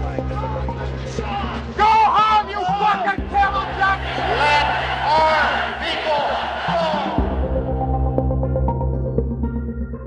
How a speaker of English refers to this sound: The situation was potentially explosive as Iranian marchers were met by angry, jeering crowds of people who shouted, "Iranians go home," and "USA all the way." Go home!